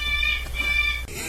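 A pet bird in another room gives two harsh, sustained squawks in quick succession, loud and sounding agitated, followed by a brief burst of rough noise.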